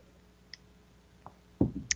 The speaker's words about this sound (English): Think about that while I have a sip of water.